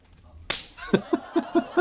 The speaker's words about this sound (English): You know, if I were the dean, I'd slap you in the face.